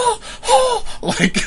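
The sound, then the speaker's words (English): A person imitates the ragged gasping of a dog, Peachy, dying after drinking antifreeze: a few strained, breathy heaves in close succession, loud, with no other sound around them. “Oh, gasping and trying to breathe.”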